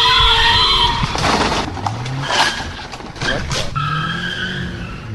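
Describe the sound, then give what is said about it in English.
Tires squeal loudly, followed by several harsh crunching bursts of a hit-and-run car collision on Hoover Street in Los Angeles, happening behind a TV reporter at the scene of an earlier hit-and-run, with engine and traffic noise running underneath throughout. “A car crash happens right behind a reporter who was doing a story on hit-and-run car crashes.”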